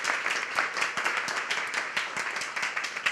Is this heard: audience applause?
yes